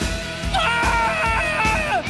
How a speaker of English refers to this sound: That's part, the screaming is part of it.